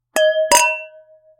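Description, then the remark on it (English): Two glasses of Sauvignon Blanc wine clink together in a toast, in quick succession, a light tap followed by a fuller touch, leaving a bright ringing tone that fades slowly. No voices. “Well, I think without further delay, cheers. Cheers.”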